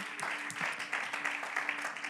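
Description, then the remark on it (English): An audience claps their hands together as praise to Jesus in a steady, dense wash of applause that continues throughout, with faint voices murmuring underneath. “One more time, let's give Jesus a hand clap of praise in the house.”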